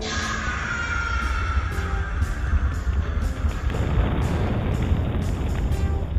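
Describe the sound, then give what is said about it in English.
A steady, loud roar of volcanic eruption, deep rumbling underneath with hissing and periodic crackling bursts on top, continuing without pause and with no voices. “Rocky held fast to the faltering jetpack as one last fiery burst erupted from the mouth of the volcano.”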